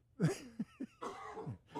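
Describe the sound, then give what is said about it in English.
A person coughs several times in a quick, uneven burst, fairly loud, with short gaps between the harsh, throaty bursts and no speech. “I don't have a cough button out here.”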